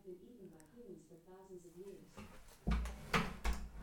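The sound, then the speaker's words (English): An Alexa smart speaker voice talks briefly, then a door swings shut with a heavy, booming thud, followed by a couple of rattling knocks as it settles, and the voice stops. “We closed the door, and Alexa stopped talking.”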